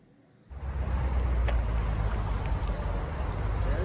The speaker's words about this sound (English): Oh my gosh. They're U-Haul trucks? Pulling in. Yep, U-Haul. They had Penske trucks, and they're loading in.